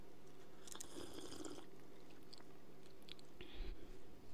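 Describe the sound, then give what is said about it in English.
Mouth noises of someone sipping a Red Bull energy drink: a longer wet slurp early on, quieter smacks, then a short gulp near the end, with no talking. “And again, it only goes well with Red Bull. It's our legendary sip and our food for thought.”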